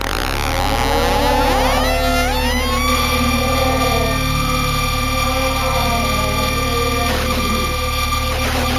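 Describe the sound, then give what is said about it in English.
A piercing, high-pitched tone holds steady and loud for several seconds after a brief opening of swooping, siren-like pitches, with a dense layer of buzzy overtones and no voices. “The sound was unmistakably high-pitched and seemed static, despite the fact that I had the impression of hearing pitch variations without being able to distinguish them.”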